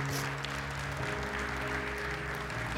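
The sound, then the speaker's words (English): A church audience claps together in sustained applause as a hand clap of praise to God, a dense wash of hand claps over a steady musical backdrop of held organ-like tones. “Would you give him a hand clap of praise right now?”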